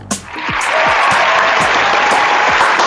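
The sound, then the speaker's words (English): Sustained audience applause as the hosts of a dating show are introduced, a dense, steady wash of many hands clapping that swells quickly after a brief start and holds loud throughout, with scattered sharper individual claps poking through. “We have if you hear a little extra applause.”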